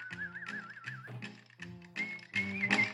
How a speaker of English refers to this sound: Now there's that whistle.